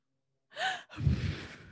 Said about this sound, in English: why are you breathing so heavy into your microphone, Mom?